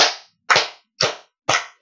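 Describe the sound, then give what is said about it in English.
Four slow, deliberate hand claps in a studio, evenly spaced about half a second apart, each one sharp and crisp with a quick ringing decay, and no voices. “Here's a slow clap again for Ched.”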